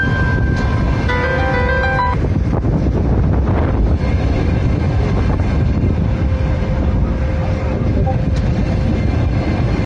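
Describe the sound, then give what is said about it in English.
A passenger train crossing a bridge, the first passenger train back across it, rumbles past with a steady, loud low-frequency roar and clattering, joined early by brief tonal squeals or horn-like notes, with wind buffeting the microphone throughout. “So, first passenger train back across the bridge.”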